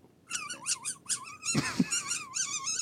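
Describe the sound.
A voice imitates a mouse with a rapid run of high, wavering squeaks, fairly loud, broken midway by a couple of low breathy bursts before the squeaking carries on.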